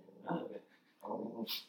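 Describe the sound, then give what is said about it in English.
A dog barks twice, the two muffled, fairly quiet barks separated by a short pause, followed by a brief sharp high-pitched sound at the end. “Sorry, doggy. That's Albert. Yeah, he barks at ghosts.”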